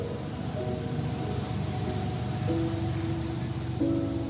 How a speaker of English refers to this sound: As we face the sea, the sounds of ship traffic can be heard in the distance.